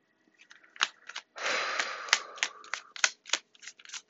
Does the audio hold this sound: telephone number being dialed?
no